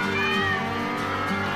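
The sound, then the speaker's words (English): A dense chorus of a huge herd of cats meowing at once as they are driven across a river, swimming, loud and continuous, with overlapping yowls forming a steady wall of sound. “You should see just millions of cats. they're going through.”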